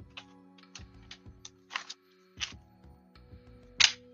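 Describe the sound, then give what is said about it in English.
Tarot cards being shuffled, with a run of soft taps and crisp papery riffles, a few louder snapping bursts near the end, and no talking. “Shuffle.”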